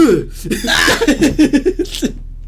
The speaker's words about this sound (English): But yeah, see, I chugged it, and then I just cough.